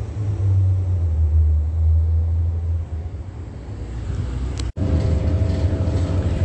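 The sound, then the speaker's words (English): Steady low engine rumble and road noise inside a moving OmniTrans city bus, loud and continuous, with a brief cut in the sound near the end. No one speaks. “I did get on the bus immediately after capturing my video at 12:30 p.m.”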